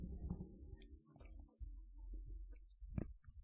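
Faint sipping of water: soft wet mouth clicks and a gulp over a low murmur of handling noise, with a slightly sharper click near the end and no talking.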